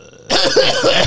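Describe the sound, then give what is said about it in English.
A short, breathy cough bursts out after a brief moment of quiet and rasps on for about a second, fairly clear, with no talking around it. “Weak moan. Something dragging. Light cough.”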